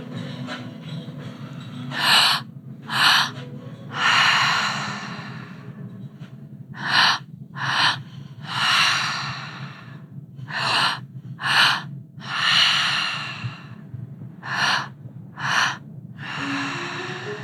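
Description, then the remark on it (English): Heavy, forceful breathwork breathing repeats in a steady rhythm, sharp gasping inhales alternating with longer rushing exhales, loud, over a low constant hum with no talking. “So breathing into our bodies, and allowing our energy to surface.”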